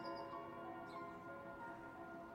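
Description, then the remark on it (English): A church bell's toll hangs in the air, its rich metallic overtones sustaining and slowly fading at a steady, moderate level, with no voices. The bells ring across Dean Street, Wardour Street and Old Compton Street, one ring for each victim, before a minute's silence. “As the last bell tolled, thousands of people stood, heads bowed, as they observed a minute's silence.”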